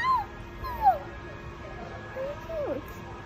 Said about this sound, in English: Oh, they're so tiny. It's two. Oh, it's two. Yeah, two kitties.